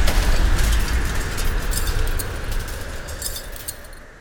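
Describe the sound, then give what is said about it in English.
A robot's explosive charge set on glass goes off: a deep, rumbling blast opens, followed by a shower of glass tinkling and clinking that scatters down over several seconds as the roar slowly fades. No voices. “He's got an explosive charge on the glass! Get down!”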